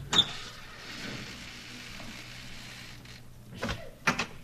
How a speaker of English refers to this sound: Come on, we'll go in through the front door. I'll open it.